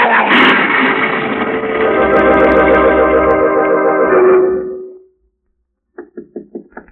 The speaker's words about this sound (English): Who's there? Who's knocking?